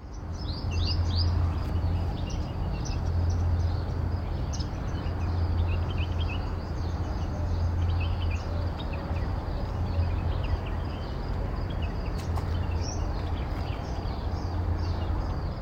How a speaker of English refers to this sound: So for Sound of the Week, I thought I would get out to try and record the lovely morning trill of the male purple sunbird.